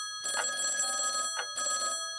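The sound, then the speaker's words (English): A voice imitates a ringing telephone, producing a long buzzing trill, a brief chirp, then a second shorter trill, loud and alone with no talking. “Can I be the sound of the phone?”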